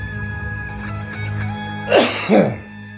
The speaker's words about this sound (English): Maybe I do. Maybe that's called a cough.